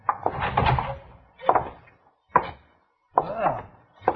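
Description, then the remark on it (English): A jail door is opened: a series of sharp wooden clunks and latch knocks, with a short creaking sweep near the end, and no voices. “Now open the door and go right on in.”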